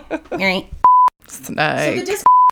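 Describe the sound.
Two loud, steady electronic notification beeps from a computer, each about a quarter-second long and spaced over a second apart, with people talking in between.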